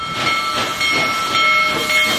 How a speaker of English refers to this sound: It's something railroad enthusiasts believe they might never see again. One of the biggest steam locomotives ever built, back on the tracks, rumbling west under its own steam.